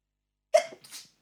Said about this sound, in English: Sorry, I want to sneeze.